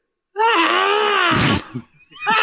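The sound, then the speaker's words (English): A voice imitates a man screaming at himself at night: one long, loud, strained wail held for over a second, breaking off into a ragged gasp, then a second scream starting right after. “And he just starts screaming at himself again.”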